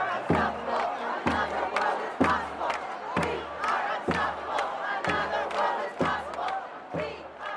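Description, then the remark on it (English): A large protest crowd of well over 1,000 people on Broadway in the financial district, blocking traffic, roars and chants together, its dense, loud noise punctuated by sharp rhythmic beats roughly once per second, steady throughout. “it was really hard to tell how many people were in the crowd at that point, well over 1,000, I would guess, and the mood was hopeful.”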